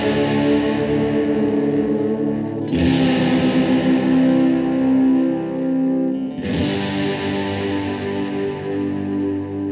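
A thick, fuzzy distorted electric guitar roars continuously with a wavering, watery chorus shimmer, loud and sustained, with two fresh chord strikes swelling the wash about three seconds apart.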